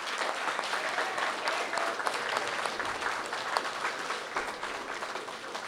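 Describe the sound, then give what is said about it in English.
A crowd applauds the parents steadily, a dense wash of many hands clapping at an even, moderate loudness for several seconds with no voices standing out. “Let's round of applause for parents.”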